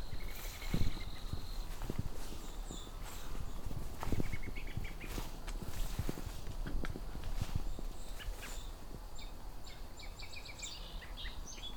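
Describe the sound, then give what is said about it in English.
Quiet, rambling American robin practice song in the fall, with soft, scattered warbled phrases, heard over crunching footsteps and light outdoor rustling. “Well, there's a robin singing a little bit. Bit of practice song.”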